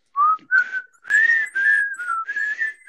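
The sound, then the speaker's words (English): People whistle a bouncy, cheerful TV show theme melody in several short breathy phrases with brief pauses between them, fairly loud and with no talking. “I like that we're whistling it at different points.”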